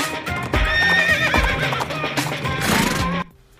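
A horse neighs loudly over galloping hoofbeats, a dense, rhythmic thunder of hooves under repeated whinnies that cuts off abruptly near the end.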